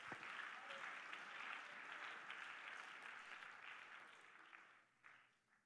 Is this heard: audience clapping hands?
yes